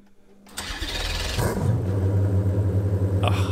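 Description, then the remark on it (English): A car engine, with a laptop connected to the car's control system logging engine revs per second, cranks and catches after a moment of silence, flares briefly as it fires up, then settles into a loud, steady, throbbing idle. “A laptop connected to the control system of the car, and we've set up a test file which will tell us how fast the engine is revving per second.”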